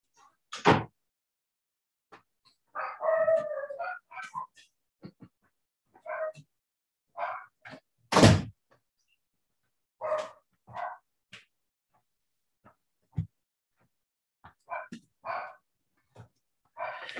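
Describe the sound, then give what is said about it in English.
Two small guard dogs bark in scattered, uneven bursts across the whole stretch, a few sharp loud barks standing out among shorter yips and whiny vocal sounds, with quiet pauses in between. “I got a couple of dogs and I happened to get a couple of dogs that are naturally guard dogs.”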